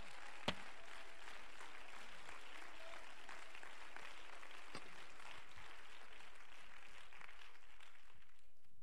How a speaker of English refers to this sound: Hallelujah, hallelujah. Clap your hands and let's give praise to Him.